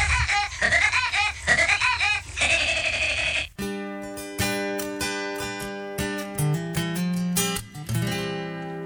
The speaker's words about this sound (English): And oh, by the way, there is one more sound of a woodpecker.